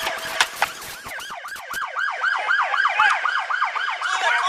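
Police sirens wail in a rapid, repeating yelp, a fast rising-and-falling tone cycling about three times a second over steady traffic rumble, with a few sharp clicks and knocks at the start, in police video audio just after a vehicle chase ends in a crash.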